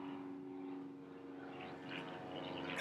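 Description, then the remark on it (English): A black helicopter flies overhead while landing, with a steady, throbbing engine hum that holds for a few seconds and swells louder near the end. No voices are heard. “There's Augustus right now landing in his. Black helicopter.”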